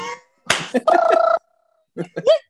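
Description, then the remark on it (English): A sharp slap of a hand against skin rings out, followed by a brief sustained vocal tone and a few short grunting mouth sounds. “Big man slapping big meat.”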